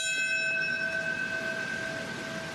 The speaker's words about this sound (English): A 9/11 commemoration ceremony in New York City. A bell rang out at 8:46 a.m. to mark the time the first hijacked plane hit the North Tower of the World Trade Center.